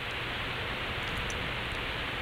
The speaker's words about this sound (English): Ooh, this is ambience. It is. It's like white noise. Yeah, we have a local ambient musician. Somebody just called us in and decided to blast some pink, put some pink noise or something in the air.